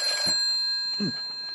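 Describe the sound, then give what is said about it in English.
A telephone bell rings continuously with a steady, metallic tone, moderately loud, with a couple of soft low thumps underneath and no voices. “Poirot positively rushed to the phone.”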